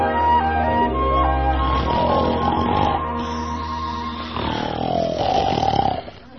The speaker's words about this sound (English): Hey, who that snoring? That can't all be me.